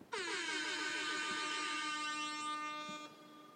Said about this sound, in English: extra air horn.